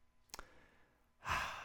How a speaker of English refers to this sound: Last one. Inhale. One, two, three, four. Pause. One, two. Exhale.